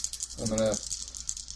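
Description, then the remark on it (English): A Zippo lighter is flicked open and shut, its bright metallic clicks repeating in a quick, steady rhythm. A brief low vocal murmur rises in the middle. “Looking out into the distance and just flicking those Zippo's lighter open and close. Open and close. Chink, chink, chink.”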